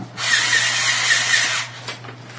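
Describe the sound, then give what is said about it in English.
A pencil is sharpened in one steady, harsh grinding burst lasting about a second and a half, with a faint squealing edge, over a constant low hum that continues after it stops. “No, it's just stripping off one side of the pencil.”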